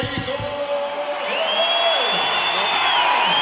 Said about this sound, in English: Jaime Munguia just made it to the to his introduction point. You're about to hear the crowd. We're going to let you guys listen to this.